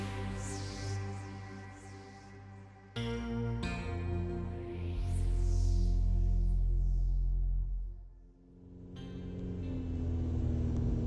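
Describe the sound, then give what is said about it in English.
A car engine rumbles low and steady, swelling louder as it draws near, then drops briefly before idling again. It is Casper and Loza's car heading back from Leo's gym and approaching their warehouse. There is no talking. “Heading back from Leo's gym, Casper and Loza's car approaches their warehouse.”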